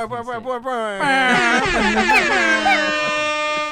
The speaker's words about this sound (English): Insert siren sounds.